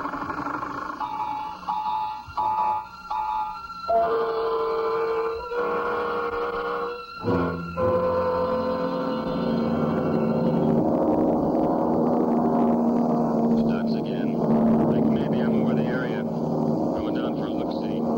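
An aircraft engine cranks before daylight with a few uneven, stuttering turns, then catches and settles into a steady, loud droning roar with a low hum underneath.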